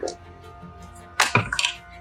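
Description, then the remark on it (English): A six-sided die (d6) clatters and tumbles across a hard surface during a tabletop role-playing game, a quick burst of sharp clicks and knocks, loud against a quiet background before settling. “Okay, roll a d6 for me, please.”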